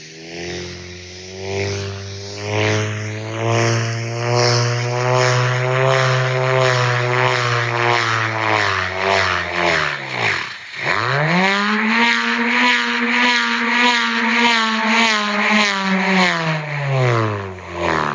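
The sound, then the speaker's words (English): A bullroarer, given a slight twist on its cord and swung in a circle, whirs loudly in a continuous droning roar, pitch rising and falling as it spins, cutting out briefly midway before surging back up with a deeper pulsing hum. “The bull roarer chord is given a slight initial twist, and the roarer is then swung in a large circle in a horizontal plane or in a smaller circle in a vertical plane to get its signature sound.”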